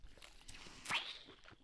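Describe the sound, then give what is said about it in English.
Someone drinks water: soft clicks and mouth noises, then one louder wet gulp with a brief rising whistle-like tone partway through, followed by quieter swallowing sounds. No one speaks. “That was me drinking my water.”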